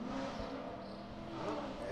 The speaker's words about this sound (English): That's just a little red car being noisy.